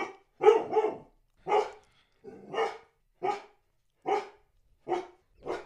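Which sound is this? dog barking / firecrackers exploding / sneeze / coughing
dog barking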